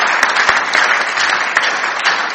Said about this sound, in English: Clap for Jesus. Clap for Jesus.